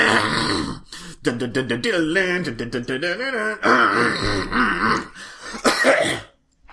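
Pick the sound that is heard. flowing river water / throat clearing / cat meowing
throat clearing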